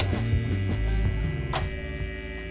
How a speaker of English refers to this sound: … begins with the hum of amplifiers set at a maximum volume and someone screaming attack.